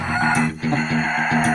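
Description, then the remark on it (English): Chickens clucking in a loud, steady run of short, throaty calls, with a rooster's voice among them and no talking. “Some hold grudges against other birds and never forget how mean another bird was, and others are best friends.”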